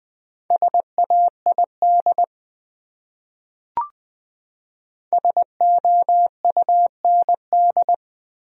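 Morse code for one of the top 100 common words sent at 20 words per minute: a steady mid-pitched tone keyed into short dots and longer dashes, two bursts separated by a pause with a single faint click between them.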